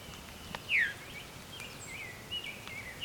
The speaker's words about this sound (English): Oh, veer. That's a veery. Veery is a type of thrush. And it's named for this veeru call.